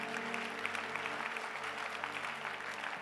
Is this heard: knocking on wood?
no